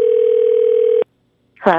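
A single loud, steady telephone ringback tone from an outgoing prank call for the 'Phone Jenks' segment drones for about a second, then cuts off into silence before a voice briefly begins speaking at the very end.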